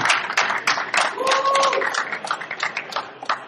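A crowd applauds with steady, dense clapping that fills the whole span, while a brief whistle-like tone rises faintly through the middle of the noise.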